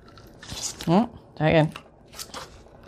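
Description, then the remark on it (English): Scissors crunch through a stack of medium-thickness paper, cutting all the layers at once in a few short, rough bursts, with a person's voiced sounds and murmuring in between. “Make sure that you have the spine edge on this end and the open flap at the top, because we are going to attempt to cut all of these at once simultaneously.”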